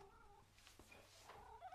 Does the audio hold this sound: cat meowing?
yes